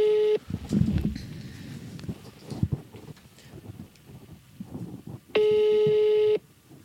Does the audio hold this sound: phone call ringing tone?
yes